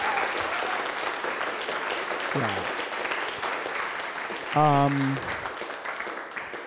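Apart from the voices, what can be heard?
audience round of applause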